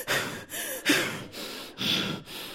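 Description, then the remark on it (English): A voice imitates a sister's heavy, exasperated breathing on the phone: five or so loud, forceful huffs in quick rhythmic succession, with short pauses between each breath and no words. “Like, I could call my sister, and as soon as she get on the phone, she breathing on her.”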